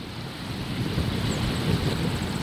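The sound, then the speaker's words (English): A steady, low roar of ocean surf mixed with blustery wind buffeting the microphone, recorded on a tall dune near Vega Baja on Puerto Rico's north coast, continuous and fairly loud throughout with no voices. “I'm standing on a tall dune near Vega Baja in Puerto Rico's north coast. The ocean stretches out in shades of dark blue, turquoise, and pale aquamarine.”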